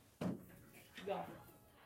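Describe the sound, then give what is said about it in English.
A door is pulled open to let a cat go outside, with a sudden wooden thump and rattle, followed a moment later by a softer scrape and a brief murmur of voice. “There we go. Boots. The door.”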